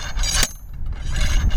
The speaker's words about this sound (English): It looks a bit like a stubby sword. He places it upright and leans in, pushing it into the ground. Seems like we're in a soft spot. And then he uses a slide hammer to help him sink that tube even deeper.